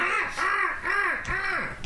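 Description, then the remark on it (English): A voice imitates an Arctic gull, letting out three harsh, arching squawks in quick, even succession, loud, with no talking in between. “Who is an Arctic gull right now?”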